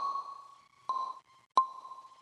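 A bright, plucky synth tone swims in heavy reverb with the mix set fully wet, two sharp plucks blooming into long, washed-out tails over a sustained ringing pitch. Moderately loud, no voices.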